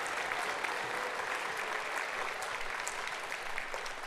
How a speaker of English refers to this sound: How about a big round of applause for Symphonic Band and Concert Band who've already performed today? What great musicianship.